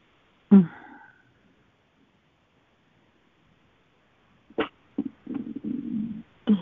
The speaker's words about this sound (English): There I go, stretching and burping.